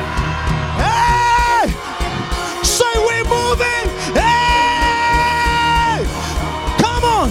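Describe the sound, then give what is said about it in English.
A crowd screams together on cue after a count of three, in loud, sustained bursts, two long rising-and-falling cries with shorter yells between, and a fresh scream starting at the end. “Hey, are you ready? One, two, three. Scream.”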